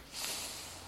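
A single sneeze, a short, airy, hissing burst of breath that fades quickly. It sounds fairly soft, with no talking around it.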